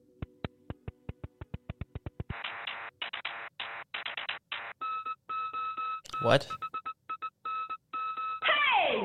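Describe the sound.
A sequence of sharp electronic beeps and tones plays in a rapid, shifting rhythm like a synthesized phone ringtone, clear. It is a Nothing OS phone sound in development, inspired by Morse code, oscillators and digital watches. A voice briefly speaks near the end.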